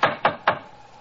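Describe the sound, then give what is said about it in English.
Three sharp, heavy knocks from a door knocker on a door with no bell, evenly spaced in quick succession, followed by quiet. “Let's try the knocker.”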